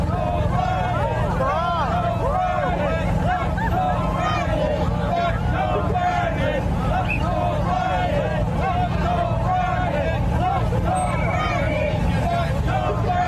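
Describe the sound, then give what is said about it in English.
A dense, steady crowd roar with overlapping voices and shouts as Joe Biden's motorcade pulls into London, heavy low rumble of engines underneath, loud and continuous throughout. “Finally, a huge crowd for Joe Biden as he pulls into London.”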